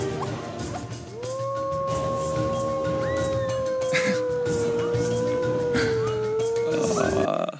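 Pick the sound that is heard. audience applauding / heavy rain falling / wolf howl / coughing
wolf howl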